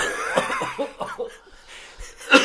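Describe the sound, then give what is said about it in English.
Several breathy coughs in short bursts, mixed with a bit of stifled laughter, ending with a sharper, louder cough; fairly loud, with no speech. “Sorry, I'm coughing too, but that is disgusting.”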